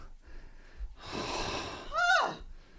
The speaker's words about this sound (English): Sneeze again. Oh my God. I mean, take care of yourself. What is happening? Allergy attack. Oh God.